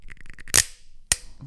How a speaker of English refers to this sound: Oh, yeah, that was a strong click. That's right. A well lidded bottle.